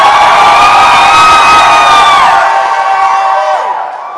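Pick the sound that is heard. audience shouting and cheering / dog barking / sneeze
audience shouting and cheering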